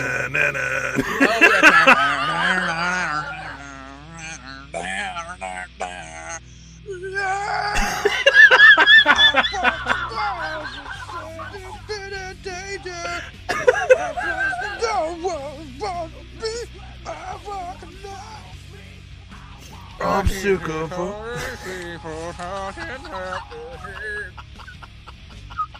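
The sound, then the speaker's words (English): A voice loudly mimics a wrestling entrance theme, belting out a strained, warbling tune in bursts with cackling, squawky sounds mixed in, for about twenty-five seconds. “Just give me the beginning of the music, and I'll do it.”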